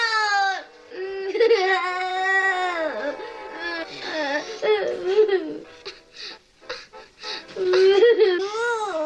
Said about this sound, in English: I almost think I hear the little kid actor there laughing during his whimpering. And I like that. It endears it to me.